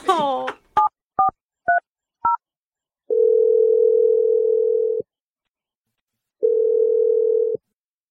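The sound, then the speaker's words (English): A handful of short touch-tone beeps as a woman's phone number is dialed, followed by two long, steady ringback tones separated by a pause, clear. “I'm just going to dial her number.”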